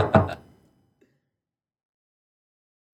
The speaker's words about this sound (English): That's gentlemen, the cheers moment. Gentlemen. 3, 2, 1. Gingerly touch tips. Gingerly.